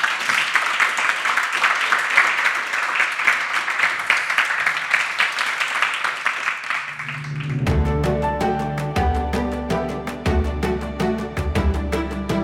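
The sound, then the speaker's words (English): A crowd at an evening talk on interior design applauds with dense, steady clapping for several seconds before it fades under music that starts partway through, with a rhythmic beat and sustained tones. “Okay, round of applause, please.”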